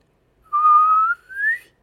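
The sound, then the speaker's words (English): A siren whistle is blown alone: a clear tone rising slowly over about a second, a brief break, then a second shorter burst that keeps climbing higher. “I'll get my … siren whistle.”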